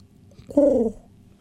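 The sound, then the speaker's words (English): A voice imitates a pigeon, making one short, low, throaty coo that dips slightly in pitch. It is moderately loud, with quiet background before and after. “like a pigeon sound.”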